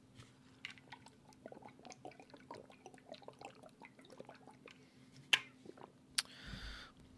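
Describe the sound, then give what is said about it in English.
Someone gulps water from a large half-gallon water bottle: a run of small wet swallowing and sloshing sounds, a sharp click, then a brief breathy rush as the drinking ends. “Speaking of water, I got to take a gulp right now.”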